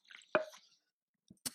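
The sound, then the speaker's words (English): A quiet sip of coffee (Summit Coffee's 1998 Summit Series, from Honduras) from a cup: a short wet slurp, a pause, then a soft swallow and a small click as the mug is lowered. No voices. “This coffee, hold on, let me get a nice little sip here.”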